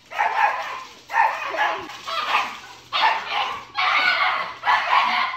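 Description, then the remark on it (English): Two dogs bark in a steady run of loud, overlapping bursts, about six volleys with brief gaps between them, with no talking. “Two dogs bumping their heads off.”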